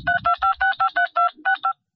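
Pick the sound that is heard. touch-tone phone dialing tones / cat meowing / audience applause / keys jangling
touch-tone phone dialing tones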